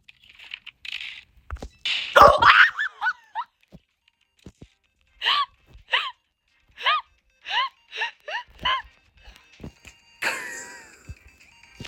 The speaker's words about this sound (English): Get out! Dog!